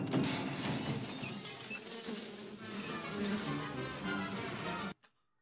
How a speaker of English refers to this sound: That's when they're trying to F with the door and all the bees come out, right? That's it. Yep, they knock on the door and the bees come out. That's when Macaulay Culkin's looking for the ring, right?